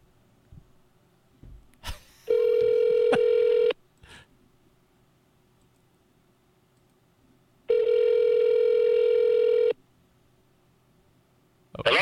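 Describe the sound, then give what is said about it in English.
A phone call to a father ringing out on the fourth attempt after the line kept dropping: two long, steady electronic ring tones separated by a pause, clear, with faint clicks and handling noise before the first ring and no talking. “He keeps hanging up on me. Hey, Dad, can you hear me? Hello, Dad? Oh, fuck. Call number 4.”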